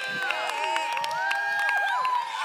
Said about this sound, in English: Let's welcome everybody who's listening right now, who's not in the room, but they're listening right now. Give them a huge hand clap and scream.